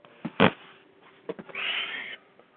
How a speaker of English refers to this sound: Hello, cat.